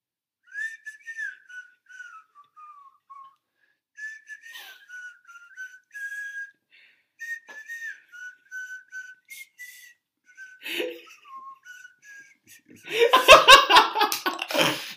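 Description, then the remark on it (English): A person whistles softly in a series of short, wavering, slightly breathy notes with brief pauses between them, then bursts of loud laughter take over at the end. “You'll hear like a little whistling sound.”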